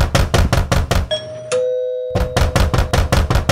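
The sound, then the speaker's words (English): A doorbell chimes a clear two-note ding-dong that rings and fades, set between loud bursts of rapid, rhythmic pulsing before and after. No one speaks. “Wait, who is at the door?”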